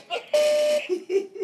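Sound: buzzer sound effect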